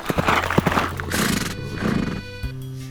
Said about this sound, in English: One day, while Pierre Leblanc was away in the forest chopping wood for the fire, a stranger came galloping down the road upon a horse.